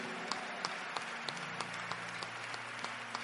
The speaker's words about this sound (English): I thought this should be the loudest clap offering here.